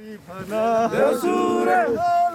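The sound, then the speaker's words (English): A group of young Nepali men recruited into Russia's army shout a war cry together in their native language as they march towards the front line, rising loud voices with long sustained and sliding tones, a few seconds of rowdy collective chanting with background noise. “Marching towards the front line of a foreign conflict, a group of young Nepali men cheer each other with a war cry in their native language.”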